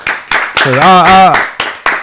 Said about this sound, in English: But …, salute to …. Clap it up for …, man.